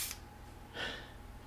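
One short, breathy sniff of a room spray, like someone smelling something, preceded by a faint brief hiss. No one speaks.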